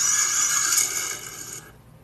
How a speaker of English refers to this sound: That was the engine noise as we were getting started. Man, there actually isn't any. Yes, there is.